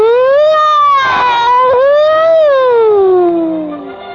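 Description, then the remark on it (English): A loud siren wails in one continuous tone, sliding up and down in pitch before slowly dropping and fading at the end, coming from inside a prank car bomb after a little pop. There is no talking. “And then out of the inside of it came the sound of a siren.”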